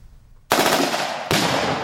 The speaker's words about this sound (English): Gunshots and explosions ring out as soldiers in camouflage navigate the obstacle course, making their way forward. Soon, this training will be mandatory for one-year military conscripts.